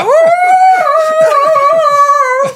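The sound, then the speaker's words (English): A wolf howls in one long, steady, drawn-out note, loud, with a series of short yelping cries repeating beneath it. “Oh boy, howl all you want.”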